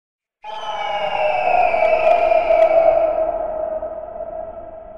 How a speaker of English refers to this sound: The thing that happens is you hear, way off in the distance, an extremely loud screeching, but it sounds like a giant eagle.